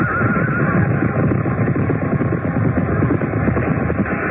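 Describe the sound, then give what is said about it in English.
A horse whinnies as its rider, a king, is thrown from it, amid a loud, dense commotion of crowd noise and clatter that fills the whole few seconds, chaotic, with no clear speech. “The king has been thrown from his horse.”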